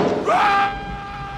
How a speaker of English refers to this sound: And we cut outside the boat to hear his scream from a distance.